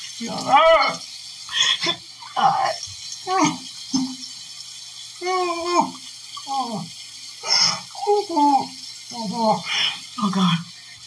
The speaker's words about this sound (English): I'm like, I'm going to put some water on my face. I'm going to put some cold water on my face.